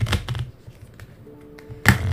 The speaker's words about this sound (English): So I'm just gonna start with shuffling the deck.